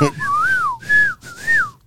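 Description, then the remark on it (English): A person whistles a short three-phrase tune, each note sliding and swooping in pitch, clear and fairly loud with no talking, mimicking a familiar film whistle. “That damn whistle.”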